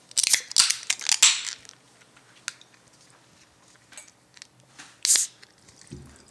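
A beer made with Idaho 7 being opened: a cluster of crinkly, scraping bursts, then scattered small clicks, and finally a short sharp hiss as the cap or tab gives way, with a soft low thud after.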